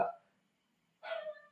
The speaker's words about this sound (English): Is that a dog? Can you hear that? Yeah, I can hear that. I swear to God, this is new dogs, and they never stop, bro. They're just like screaming all the damn time.